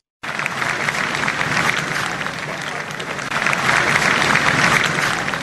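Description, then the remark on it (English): A large crowd outside Buckingham Palace applauds and cheers continuously in the evening, a dense wash of clapping with voices mixed in, swelling slightly louder toward the end. “Huge crowds of people outside Buckingham Palace tonight have been bursting into applause and cheering.”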